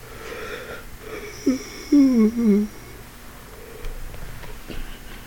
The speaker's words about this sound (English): If I just continuously yawn, maybe the episode will get better by itself.